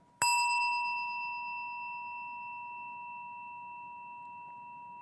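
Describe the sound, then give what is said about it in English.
A single chime is struck once, and its clear, bell-like tone rings out and lingers, fading very slowly over several seconds with nothing else heard. “As we listen to our chimes, let us remember our connection to each other and the world around us.”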